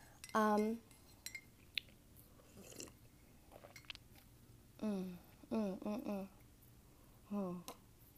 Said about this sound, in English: Ooh, my first sips of coffee. Here it is.